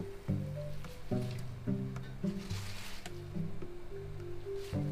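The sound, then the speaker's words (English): Broccoli rabe is dropped into a pot of plenty of boiling water to boil for three minutes, making a few wet splashes and soft squelches at irregular intervals over steady tonal background music. “I want to boil for 3 minutes. Do not boil too much.”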